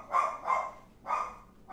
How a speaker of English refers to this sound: Oh. Being rudely interrupted by the dog. Oh, the dog.